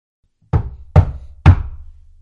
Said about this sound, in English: but before she had quite finished, she heard a knock at the door of the farm.